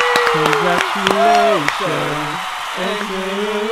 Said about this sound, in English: Give her a round of applause, guys!